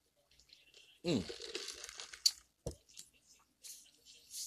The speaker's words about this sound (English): Ooh, excuse me. Take a little sip of my drink here.